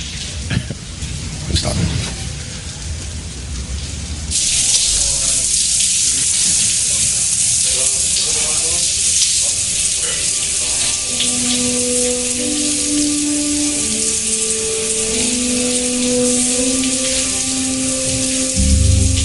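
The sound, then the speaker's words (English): After a brief, busier opening, a shower starts running and keeps up a steady hiss of spraying water, with faint voices or humming drifting over it. “I was saying, why don't we all go and take a shower?”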